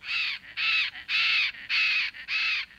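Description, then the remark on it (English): Five loud, harsh squawks from a large parrot such as a macaw, repeated in a steady rhythm with short gaps, clear against a quiet background. “Toucans and macaws, tiny pygmy kingfishers, tiger herons, and massive ringed kingfishers.”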